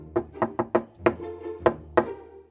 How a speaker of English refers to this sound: So I will knock on the door. You knock on the door.